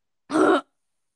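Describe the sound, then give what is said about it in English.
A single short, abrupt hiccup-like vocal burst, fairly loud, standing alone against silence with nothing before or after it. “Sniffs, hiccup, and snores.”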